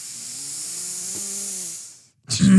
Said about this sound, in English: It sounds like one of your nostrils was clogged.